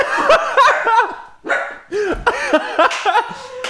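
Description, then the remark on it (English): A dog named Turtle barks repeatedly in quick, yappy bursts, with a few brief pauses between the clusters of barks. “Oh, God, turtle's barking.”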